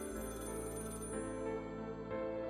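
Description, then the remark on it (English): A telephone bell in a flat rings steadily with a bright metallic trill, fairly quiet and continuous, with no one speaking. “And third, if she was running late, he would call the phone in the flat from a phone box on either Calworth Street or Spring Street to check if everything was okay.”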